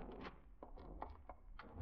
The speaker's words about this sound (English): You step back, remembering somehow that you have your own key. Fumble nervously, opening the door.